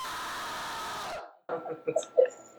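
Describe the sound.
A voice imitates a shriek: first a long breathy, hissing rush of noise, then after a short pause a few rising, strained squeals with bright high overtones, growing louder at the end.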